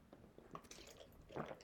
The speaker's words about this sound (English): Ooh, got a frog in my throat. Going to need a little sip of water